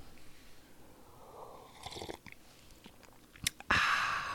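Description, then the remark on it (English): Sips of hot coffee: soft mouth clicks and a swallow, then a louder, airy slurp at the end, with no talking. “So I'm going to take a sip of coffee here, and we'll get into it.”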